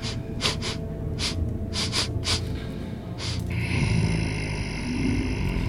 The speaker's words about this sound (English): Deep breathing and this pause seemingly coming from further ahead, that passage off towards the left where you hear this.